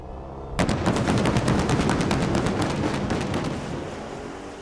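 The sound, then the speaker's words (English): A loud engine of the Dodge Challenger SRT Demon 170, the last gas-powered muscle car Dodge will make, suddenly roars to life, its exhaust pounding out rapid, rumbling pulses that stay strong for several seconds before easing slightly. “That is the purr of the last gas-powered muscle car Dodge is ever going to make.”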